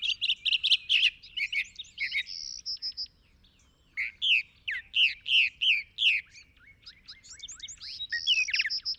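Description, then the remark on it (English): A northern mockingbird and a Bewick's wren sing at Falcon State Park while camp is set up, in bursts of bright, high chirps, buzzy trills and quick whistled phrases, with short pauses between, over a faint low hum and no talking. “There, a northern mockingbird and a Buick's wren serenade us as we set up camp.”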